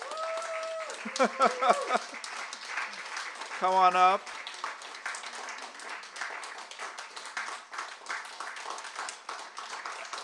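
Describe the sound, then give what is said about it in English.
An audience breaks into steady, dense applause for the Red Hat staff, continuing evenly for several seconds, while a voice calls out briefly over the clapping near the start. “just to come and say hello, and we can applaud them.”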